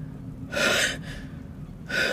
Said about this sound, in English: She begins panting.